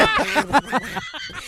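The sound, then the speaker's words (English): A person does a Donald Duck impression, squawking a rapid run of raspy, buzzy, garbled syllables that sound agitated, spoken alone for about a second and a half. “That is spot on. That's the only impression. That is perfect.”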